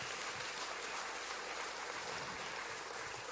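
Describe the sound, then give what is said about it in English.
A crowd applauds the OSC Crowley Dream Team steadily, a dense wash of clapping hands at even loudness for a few seconds with no voices standing out above it. “But before we go any further, I just need to give a huge shout out and a huge round of applause to all of our OSC Crowley Dream Team.”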